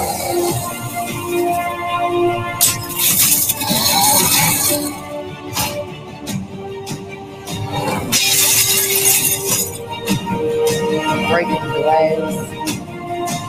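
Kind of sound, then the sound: impact, glass breaking and shattering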